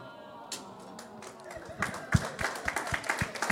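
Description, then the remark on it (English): An audience breaks into clapping: after a quiet start, scattered crisp claps build into a steady, moderately loud patter of applause with no speech over it. “So don't clap too much.”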